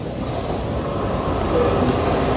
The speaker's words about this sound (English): Oh, here comes a train.